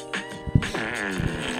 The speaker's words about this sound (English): There's an ad. No, it's not. It's just a calm fart song.